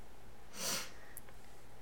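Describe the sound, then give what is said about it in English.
A single sharp sniff, like a sharp intake of breath before a sneeze that never arrives, followed by quiet with no talking. “I thought I was going to sneeze.”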